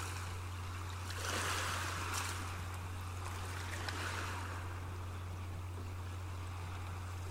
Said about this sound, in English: Imagine you're lying on the beach on a warm summer day with a slight overcast in the sky. There's a welcoming breeze that feels so good against your skin in this heat. Drops of water from the ocean splash onto your skin as the waves crash to shore.